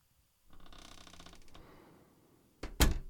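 A door to a house creaks slowly open with a rattling, grinding texture for a couple of seconds, then ends in a loud thump as it swings wide or knocks against something.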